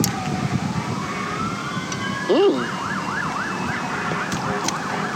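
An ambulance or fire truck siren wails through the background, rising and falling in a repeating yelp pattern over steady road noise, clear.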